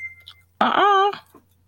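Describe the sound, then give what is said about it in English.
A phone rings once: a single loud, bright electronic burst with a buzzy, harmonic-rich tone lasting about half a second. A faint steady tone and low hum sound before it. “Okay, I don't know where one of these phone. I don't know where it's coming from.”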